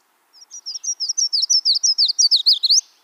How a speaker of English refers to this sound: That was a yellow warbler.